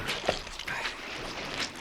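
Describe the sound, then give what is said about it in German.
Squelching, sloshing swamp water as someone in boxer shorts wades through the brown-green Waldsteiner swamp, feeling around under the surface with their hands, with several splashy, gurgling pushes of water at an uneven walking pace and no voices. “Er schmatzte und blubberte bei jedem Schritt.”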